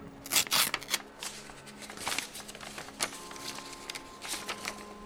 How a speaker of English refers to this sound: How's this for a paper aeroplane? Yes, it's splendid. You're getting good at this folding stuff, aren't you?